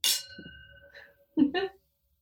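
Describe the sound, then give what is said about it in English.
A single bright clink of glasses of alcohol touching in a toast, with a clear ringing tone that fades out over about a second, followed by a short murmured vocal sound. “But when I tell you I'm proud of you, you know that I fucking mean it. Well, and I'm sincerely so proud of you. Thank you. Cheers.”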